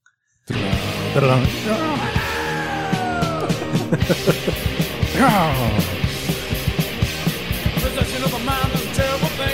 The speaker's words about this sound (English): I love the scream that opens this song.